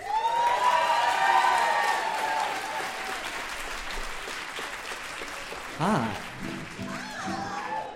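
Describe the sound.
A crowd applauds steadily with scattered cheers and whoops, loud at first and gradually thinning, while voices rise over the clapping toward the end.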